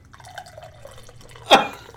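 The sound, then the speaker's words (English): Thomas Hooker lager beer is poured into a glass, a steady trickling, gurgling stream with a changing pitch, followed by one brief louder splash near the end. “Is that a pour or a pee?”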